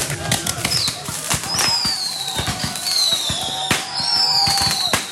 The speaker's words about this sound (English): Yes, those were fireworks, and they were part of the match, if you were wondering. I think actually those particular sounds were before the match, but they happened before, during, and after.